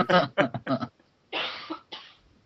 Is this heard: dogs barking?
no